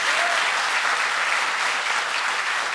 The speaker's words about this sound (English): Everybody, a round of applause for him and his devotion. His devotion to this podcast.